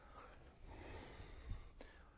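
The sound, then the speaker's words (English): A long, deep breath drawn in and pushed out during a yoga pose, airy and steady for a couple of seconds with a brief strained catch near the end. “Breathe, …. Big.”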